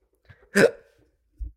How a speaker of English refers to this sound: And I'm having anxiety hiccups. I need my Pepto-Bismol.